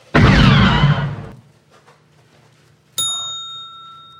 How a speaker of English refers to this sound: That's a blaster. Yes. Firing. Yes. And it was Ben Burtt banging on like a piece of wire that like a power con. Yeah, it was the guy wire for a radio tower.